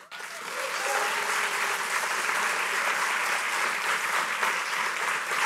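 A crowd applauds steadily after a poem reading, a dense wash of many hands clapping that swells in quickly and holds at a fairly loud level for several seconds, with no talking over it.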